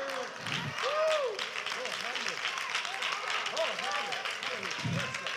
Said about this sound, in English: I know you don't do it like that, but clap a minute. Just sometime, take them hands and clap them.